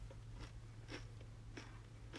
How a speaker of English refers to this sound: Can they hear my chewing? Yeah, but it's fine.